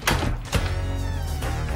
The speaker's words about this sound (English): Front door, twist left, pull, twist right, flip, stop!